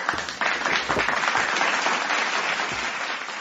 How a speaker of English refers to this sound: When I say on point, let me clap for her.